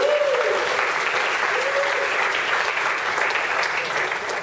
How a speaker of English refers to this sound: Give her a little ripple of applause.